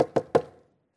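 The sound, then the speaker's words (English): Three sharp knocks on a wooden door in quick succession, fairly loud, followed by a short fading resonance and then silence. “You may have had someone knock on your door.”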